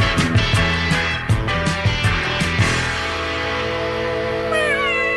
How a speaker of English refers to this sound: Yeah, the cat.